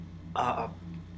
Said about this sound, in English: You go first. Talk. Let you clear your throat.